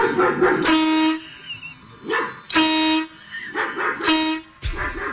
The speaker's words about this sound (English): So my neighbor got a dog, and the damn thing barks nonstop. I mean, I roll over in my bed in my own room in my own house, and this damn dog barks at me.